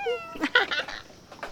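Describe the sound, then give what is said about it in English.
A cat meows once in answer to a greeting, a clear drawn-out call with a rising tonal start followed by a rougher, breathy tail, with no talking around it. “Come on, Gray, say hi. Say meow.”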